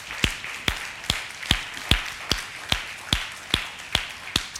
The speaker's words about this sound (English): Let's clap our hands one more time for Jesus, shall we?